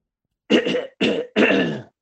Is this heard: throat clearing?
yes